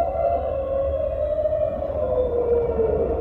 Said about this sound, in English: All of them shriek, except, and then Lugia is the one that's just like, oh yeah, Lugia's like a whale song. Beautiful.